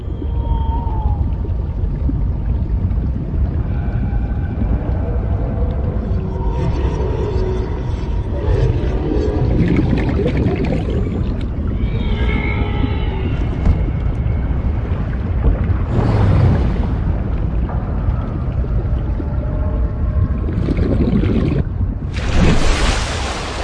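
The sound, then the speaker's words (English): Deep underwater ocean ambience: a steady, heavy low rumble fills the space while moaning whale-like calls drift through, with a couple of brief hissing bursts near the end. No one speaks. “And when you're underwater, there's this constant sense that you are tiny because the ocean is making so much noise around you.”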